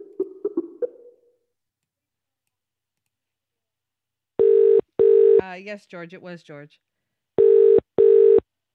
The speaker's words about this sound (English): And he wouldn't answer his phone.